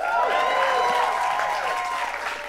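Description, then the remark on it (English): A live audience claps steadily and loudly for a couple of seconds, applauding the Inflation Reduction Act, with whoops and cheering voices mixed into the dense, continuous applause. “No, it's absolutely great to be in a room that applauds for the Inflation Reduction Act.”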